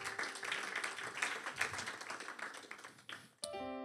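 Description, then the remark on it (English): An audience claps together in a steady, dense burst of applause for about three seconds, which cuts off abruptly as a sustained musical tone begins. “Go ahead and clap.”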